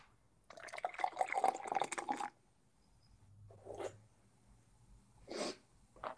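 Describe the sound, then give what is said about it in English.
A drink pours in a steady rush for about two seconds, then stops; two brief, softer splashing bursts follow after a pause. No one speaks. “Did you pour hard already? I poured hard.”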